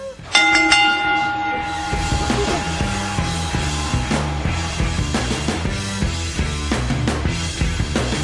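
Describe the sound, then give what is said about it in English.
A single loud bell strike rings out near the start, its bright tone lingering for a few seconds as rhythmic music with a steady beat rises underneath and carries on. “if you will, ring the bell.”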